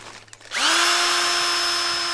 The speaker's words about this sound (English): Let me get my drill bit here and put it in my drill. Okay.